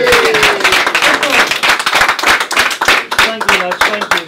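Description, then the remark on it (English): A crowd cheers and claps loudly for boxer Billy Joe Saunders, two-weight world champion, after his fight, dense rapid hand claps mixed with shouting voices and whoops, a steady energetic burst of applause throughout. “We've got a cheer for Billy Joe Saunders.”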